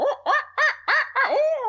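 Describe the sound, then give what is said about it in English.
A human voice imitates an owl in an owl-calling contest, giving five quick, loud hooting calls in a steady rhythm, the last one drawn out and sliding down at the end. “What I'm wanting to hear as one of the judges of this contest is what I feel like sounds like an owl in the woods.”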